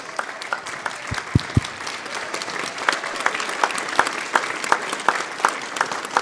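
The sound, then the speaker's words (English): An audience claps and shouts to honor a man invited up to the front, many hands producing a dense, continuous patter of sharp slaps with a few louder individual claps standing out, sustained at moderate volume throughout. “You guys give a clap, a shout.”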